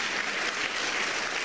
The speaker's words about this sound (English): They didn't hear you, they were clapping, so say it again.